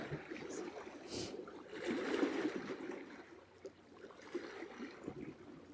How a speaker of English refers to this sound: The water and rocks at play, back and forth, each wave new.